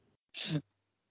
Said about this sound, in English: It's the most over-exaggerated coughs I've ever heard in my life.